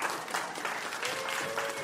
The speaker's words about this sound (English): There's not more applause for trepanning out there?